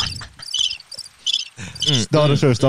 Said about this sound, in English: I was trying to get the crickets. Yeah.